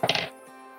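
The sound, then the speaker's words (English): Dice rattle and clatter in a quick burst of several sharp, bright knocks lasting under half a second, then the sound stops and only faint background hiss remains. “Okay, so roll the dice again.”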